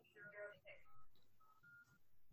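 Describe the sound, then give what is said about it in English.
A quick run of electronic keypad beeps as a 9-digit number is punched into a cell phone in Germany, several short tones in an uneven sequence, with faint voices murmuring in the background. “She just gave her a 9-digit number.”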